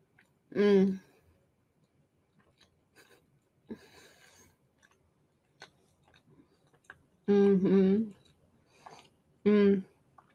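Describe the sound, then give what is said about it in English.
Quiet crunchy chewing of a pumpkin spice scone made with oats, crunchy outside and fluffy, moist in the middle, comes in a few soft bites and crunches, broken up by three loud, drawn-out hums of enjoyment from the eater. “It's got a nice like crunch on the outside.”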